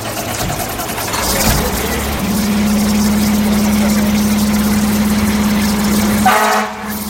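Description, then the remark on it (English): A fire truck engine idles with a steady, low droning hum that holds for several seconds before cutting off abruptly near the end. “I went out on calls on the fire truck when calls came in.”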